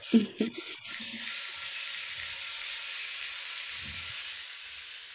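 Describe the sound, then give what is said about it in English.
A rain stick pours a steady, bright rushing hiss, like falling rain, sustained for several seconds with a few soft low knocks at the start and near the end. “And then I have my rain stick.”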